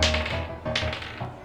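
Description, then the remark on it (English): Twenty-sided dice clatter across a table as everybody rolls a d20 for a dice-style game of blackjack, in a few quick bursts of rattling taps, one roll tumbling after another, with no voices. “Everybody roll the d20.”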